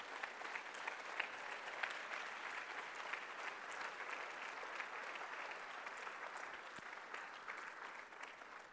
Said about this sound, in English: Get on your feet this morning, please. Put your hands together and give a loud clap offering of praise to the Lord God.